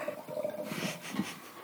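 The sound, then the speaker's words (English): Wine is poured into a spittoon, a short steady gurgling splash that lasts under two seconds, fairly quiet, with no one speaking. “So and I try to use your spittoon to pour a little bit out.”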